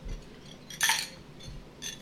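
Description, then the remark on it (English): Glasses clink together in a toast, a bright ringing chime near the middle, followed about a second later by a softer second clink, with no voices. “So we're going to cheers.”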